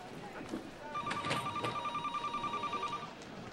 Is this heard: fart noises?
no